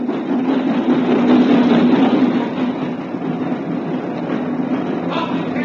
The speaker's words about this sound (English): At lunchtime, he was sipping an old and mild in the platform buffet when the boat train pulled into the station.